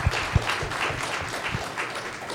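A round of applause: many hands clapping in a dense, steady patter, with a few sharper, louder claps standing out early on. No voices, and the sound stays even throughout.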